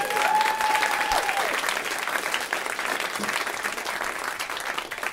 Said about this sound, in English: Let's give his balls a round of applause.